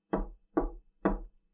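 Three firm, evenly spaced knocks on a wooden door, fairly loud, each with a dull low thud, then silence.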